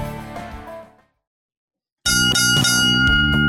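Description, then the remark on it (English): Three bell chimes: a ringing bell chime fades away, then after a short silence bright, loud bell tones ring out again, sustained and overlapping. No one speaks. “Three bells and all is well.”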